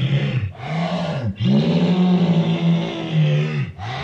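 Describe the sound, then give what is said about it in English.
A monster sound effect of deep, throaty moaning, heard alone: three long, loud groans that swell and sag in pitch, separated by brief breaths, with a rough, growling, snore-like texture. “That's a terrible sound effect. What the hell is this sound effect? It's supposed to be, it says moaning monster.”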